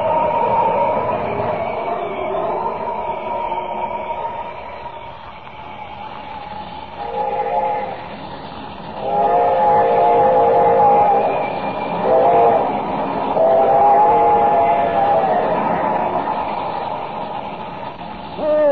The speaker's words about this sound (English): Have I time, I wonder? Can I reach that bridge before the train does?